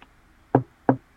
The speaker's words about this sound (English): At that moment, there's a knock on the door.